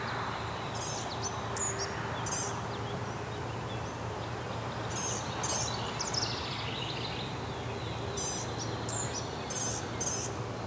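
Gnatcatcher and house wren calls, the gnatcatcher on the right and the house wren on the left, come in high, thin bursts of squeaky notes and rapid chatter, in three separate clusters over a steady low hum of outdoor background noise.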